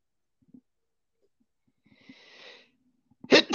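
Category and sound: human body sound, sneeze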